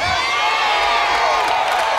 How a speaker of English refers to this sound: Now for those of you who wonder why these people are standing up shouting, it's because if you really believe that, anytime I said, thus saith the Lord to his anointed, you'd slap somebody next to you and say, excuse me, but he happened to be talking